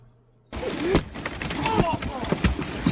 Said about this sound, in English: So check out this video from yesterday up in Lake Tahoe, California, with a massive hailstorm hit. Unreal.